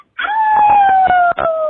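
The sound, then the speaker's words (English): A child's voice imitates a wolf howl as the punchline of a joke about a hurt wolf, one long, loud wail that holds steady and slowly sinks in pitch for about a second and a half. “What did the wolf say when he got hurt?”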